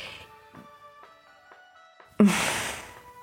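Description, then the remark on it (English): A person lets out one loud, breathy yawn that starts suddenly and trails off over about a second, following a quiet stretch with soft sustained tones in the background. “Oh, what a yawn.”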